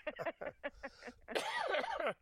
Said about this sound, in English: Oh, don't make me laugh. I have some kind of cough. Every time I laugh, I'm coughing. Sorry.